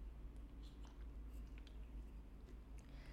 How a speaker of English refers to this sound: So as I'm sipping on this cocoa juice, have a thought about it.